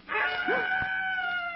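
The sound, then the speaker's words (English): A screech owl's call: one sustained, quavering cry that holds steady and fairly loud for over a second, with no voices around it. “Screech owl.”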